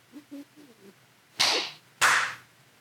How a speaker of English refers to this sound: So at 9:57 and 30 seconds, clap. When it hits 30.